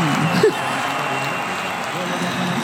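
A crowd cheers and applauds in a steady, dense wash of noise, with a brief shout rising above it near the start, and the roar holding level to the end.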